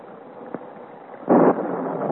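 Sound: thunder crash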